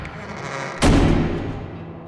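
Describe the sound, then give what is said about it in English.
A door slams shut with one sudden, heavy bang that rings out and fades over about a second, following a stretch of low, steady background rumble. “Slam the door shut.”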